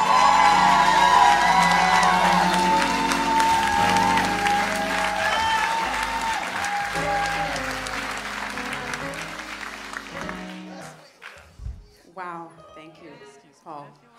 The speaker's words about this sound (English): Have to join in and applaud you for that. We love you, and that's amazing.